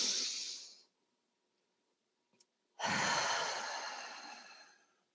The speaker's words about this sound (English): So in for five, hold it for three, breathe out for seven. In, you know, and just take in those deep breaths.